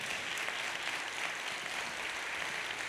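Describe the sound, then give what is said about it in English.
A church audience claps together during a sermon in a dense, steady wash of applause that fills the whole stretch, many hands blending into a continuous roar with no voices on top. “Clap your hands one more time, everybody.”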